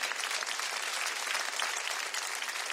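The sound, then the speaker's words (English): A burst of audience applause for the Navy veterans, dense and steady clapping from many hands filling the whole moment at an even, fairly loud level, with no voices standing out. “Give it up for the Navy.”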